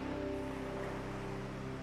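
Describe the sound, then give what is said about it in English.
A steady, soft wash of surf as waves break gently and repetitively on the shore, holding an even level throughout with a low sustained humming tone underneath and no voices. “You listen once again to the gentle, repetitive movement of the waves breaking on the shore.”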